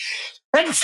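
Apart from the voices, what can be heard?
sneeze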